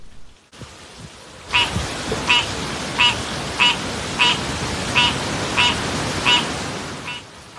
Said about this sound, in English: It's 7:45 p.m. on September 5th, and Dorian is moving in. Here is the rain and the wind gusts, along with a croaking frog. Take a listen.